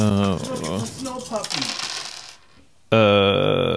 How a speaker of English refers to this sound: Oh, I got to roll the other dice, too. That's right. Two successes and two threats. Can't just roll the good ones. Got to roll the bad ones, too.